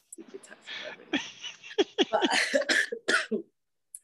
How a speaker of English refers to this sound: I'm coughing, but it's not COVID related.